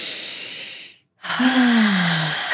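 A deep, noisy breath drawn in during a yoga breathing practice, a brief pause of silence, then a long breathy exhale with a low voiced sigh that slowly falls in pitch.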